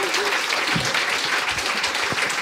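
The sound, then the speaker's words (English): A crowd at a live show applauds the guests on stage, dense clapping filling the whole stretch at an even, fairly loud level, with a few faint voices mixed in underneath. “Round of applause to these guys for handling that like absolute champions.”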